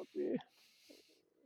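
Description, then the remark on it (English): A female dog snores: one low, rumbling snort followed by a long airy hiss of breath. Faint voices murmur in the background afterward. “No, my dog. She's been snoring this whole time.”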